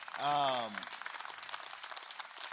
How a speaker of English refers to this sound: So you guys should hand clap for that.